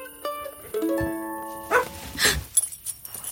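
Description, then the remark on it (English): A dog lets out a couple of sharp barks after some drawn-out whining tones, followed by a few softer scattered yips and noises. “Hey, pup. You scared me. Come here, buddy.”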